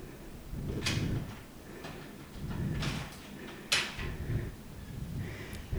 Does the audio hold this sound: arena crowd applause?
no